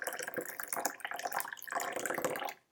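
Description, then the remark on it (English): Hot water at about 60 degrees Celsius pours steadily into a teapot holding about 5 grams of tea for under three seconds, a splashy trickle that swells slightly and then cuts off abruptly. “For this, I'm going to be using about 60 degrees Celsius water.”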